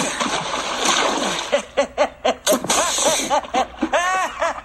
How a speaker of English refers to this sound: As I remember, he was on a boat, and then he came out of the galley of the boat, whipped off his wig and said, "I'm not Wavy Gravy after all," and then he dove into the ocean.